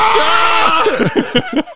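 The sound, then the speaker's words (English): A person vocally imitates an entire city screaming in fear: a loud, strained cry that breaks into a rapid series of choppy, gasping yelps, with no other talk. “Perhaps we'll hear them. Like an entire city screaming in fear.”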